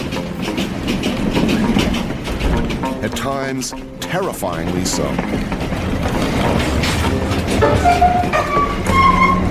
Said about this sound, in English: Yangon's gravitational pull broken, and with darkness falling, the train picks up speed.